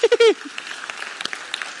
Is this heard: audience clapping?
yes